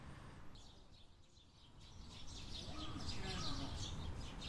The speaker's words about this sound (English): You can probably hear those birds. I just came out of the Steyr shop, this postmodern, very, very contemporary designed group of buildings in Daikanyama.